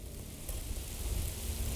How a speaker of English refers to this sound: As I made my way to the group of trees, I felt the first drop of rain hit my face. In seconds, it was a downpour of rain and hail.